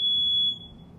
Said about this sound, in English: That's done pissed the dog off. He's scared now. That wasn't even our alarm.